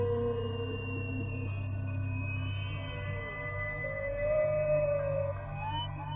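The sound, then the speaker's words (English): Long, slowly gliding tonal calls drift over a deep, steady underwater rumble, rising and bending like whale song, with a faint high sweep near the end and no voices. “So for the remainder of this ad, we'll listen to some soothing whale sounds.”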